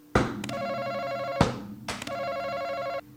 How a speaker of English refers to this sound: We each got these buzzers in front of us. I don't slap. Look, I'm going to slap mine.